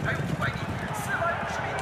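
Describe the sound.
Racehorses galloping in the final lap of a race, led by Eastern Queen (东方皇后) with Little Immortal (小神仙) close behind, their hooves pounding out a rapid, steady drumming of low thuds, with voices murmuring underneath throughout.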